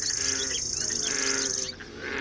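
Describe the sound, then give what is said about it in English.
In a biodiverse national park during a hike, a dense, steady chorus of croaking frogs fills the background while birds sing and chirp over it, the whole mix loud and continuous with a brief dip near the end. “The frog croaks are fighting with the bird songs.”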